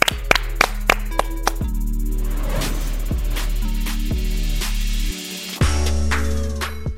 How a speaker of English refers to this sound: Clap it up.